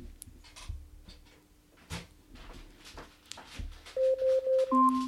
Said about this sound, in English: Alexa, stop. Your Robin timer is up. I got a feeling it was at 7 before. But anyway, there you go. You can change the timer volume as well. The volume of the alarm.